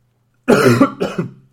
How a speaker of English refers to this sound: Excuse me. You see, I have a cough. Shouldn't really speak that much. I don't think it does me any good.